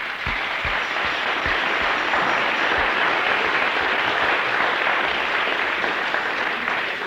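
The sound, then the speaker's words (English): A crowd breaks into steady, loud applause, a dense wash of clapping that holds evenly for several seconds with no speech over it. “Give him a clap.”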